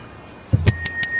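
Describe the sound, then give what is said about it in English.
A small bicycle bell rings out loud, dinging four or five times in quick succession after a brief quiet start, its bright metallic tone lingering between strikes. “That is a bell that does not really work on a podcast.”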